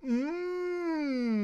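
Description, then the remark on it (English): A dog lets out one drawn-out, howling bark that rises briefly, then holds and slowly sinks in pitch. It's fairly loud and alone with no talking. “And I don't know why, as my dog barks.”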